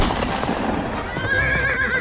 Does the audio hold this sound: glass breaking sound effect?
no